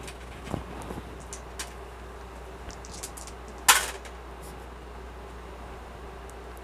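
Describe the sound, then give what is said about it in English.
Two dice clatter briefly on a hard tabletop for a perception roll, in one sharp, bright rattle midway through, with a few faint clicks and taps before it against a quiet, hushed background. “It's perception roll.”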